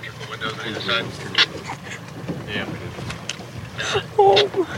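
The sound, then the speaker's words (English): A boat motors across open water to Sanibel, Florida, after Hurricane Ian severed the causeway to the mainland, with a steady low engine rumble, splashing, and wind buffeting the microphone, while faint voices come and go in the background. “Ian severed the causeway that connects Sanibel to the mainland, so the … returned by boat”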